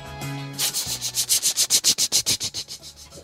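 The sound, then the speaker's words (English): A voice imitates a helicopter with a rapid series of breathy, whooshing chops, about six per second, swelling louder in the middle and then fading out, over a faint low hum. “Ooh, can't believe I said surround sound and did a helicopter noise at the same time.”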